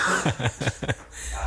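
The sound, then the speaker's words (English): A quick run of four or five short, harsh coughs in close succession, fairly loud, then a brief quiet tail with faint background noise. “Hey, he coughed.”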